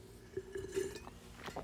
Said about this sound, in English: Cheers. As we drink, here we go first, because nothing better than the sound of people slurping while you're listening to the radio. Here we go.